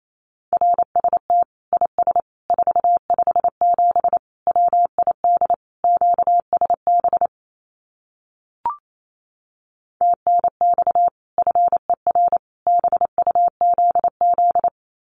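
Fast Morse code at 28 words per minute sending common QSO phrases: a steady mid-pitched tone keyed in quick dots and dashes, broken by a pause midway that holds a single brief click, then resuming.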